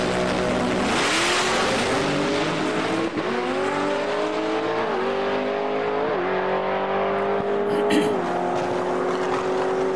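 A supercharged drag race car with a 1.7 liter blower and a 10-speed transmission roars down the strip while qualifying, its loud engine climbing in pitch and dropping with each of several quick gear shifts, continuous throughout.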